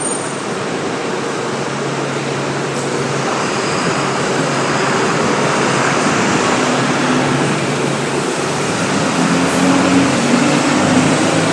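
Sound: bus driving away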